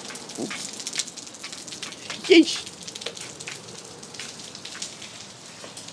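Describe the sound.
Steady rain patters and hisses outside during a mail run in northern Louisiana, a dense, continuous wash of drops, with a person's brief startled exclamations breaking in partway through.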